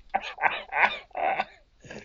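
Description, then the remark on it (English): A fit of coughing: four or five harsh, voiced bursts in quick, uneven succession, fairly loud, with a rough throaty edge and brief gaps between them. “I'm coughing. It's too much for me.”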